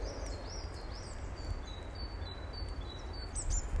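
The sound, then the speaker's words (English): Several birds sing and chirp in open patches among woodland, with thin, high, repeated whistles and trills over a steady, low, rumbling background of outdoor noise. No one speaks. “The sound of the birds has changed as well.”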